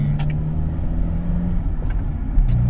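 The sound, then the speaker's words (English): A loud car with a broken exhaust drones steadily from inside the vehicle while driving home, its rough, rumbling roar carrying a few faint clicks and rattles over the constant low growl. “So anyway, travelling home in my noisy car. The exhaust broke again, so we're back to being noisy, and back to really needing to sort it out once again.”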